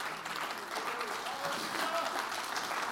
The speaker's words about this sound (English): Let's stand our feet and clap our hands and thank God for his word.